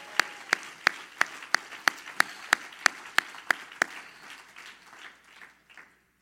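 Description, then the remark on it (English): An audience claps for the Lord in steady unison, about a dozen sharp, evenly spaced beats, then the rhythm dissolves into a looser wash of crowd noise that fades away. “Everybody clap your hands for the Lord and shout yes.”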